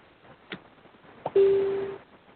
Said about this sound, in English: Oh, there it is. It beeped at us.